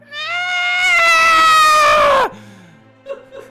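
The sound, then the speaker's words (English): A voice playing the fallen angel Zariel lets out a loud, sustained, horrendous shriek for about two seconds, harsh and bleating, with its pitch sliding downward as it cuts off abruptly, followed by faint murmuring. “She lets out a horrendous shriek.”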